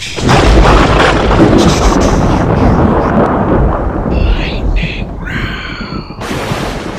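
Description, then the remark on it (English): A loud thunder-crack sound effect, made as the lightning noise before a lightning round, rolls into a heavy, sustained rumble that fills the whole stretch, easing slightly toward the end, where faint voices seem to come in underneath. “Oh, we gotta make the lightning noise first.”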